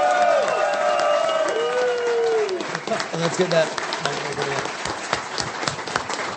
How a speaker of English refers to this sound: They are absolutely awesome. Let's get a big round of applause for them.